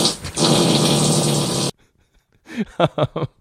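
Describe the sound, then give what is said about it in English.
A loud, harsh fart rasps for a second and a half and cuts off abruptly. After a brief silence come several short, throaty vocal grunts. “we're gonna try to end here on a who farted”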